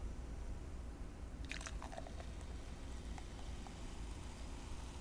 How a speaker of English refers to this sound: I'm pouring my Dr. Pepper in a pint Dr. Pepper glass.